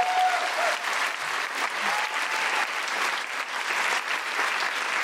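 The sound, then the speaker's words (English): A crowd applauds steadily for about five seconds, a dense, even wash of many hands clapping at a constant loudness with no voices standing out. “I'm getting the feeling that very rightly they're going to want to applaud quite often.”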